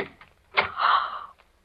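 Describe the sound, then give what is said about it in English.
The door of Room 421 swings open: a sharp latch click followed by a drawn-out, squeaky creak lasting about half a second, then a faint tap. No one speaks. “His door's open, too.”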